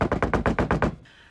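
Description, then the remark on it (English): A quick, frantic burst of about seven evenly spaced knocks on a door, fairly loud, apparently imitated by a voice or tapping, then a sudden stop into near silence. “kind of just knocks on the door very frantically.”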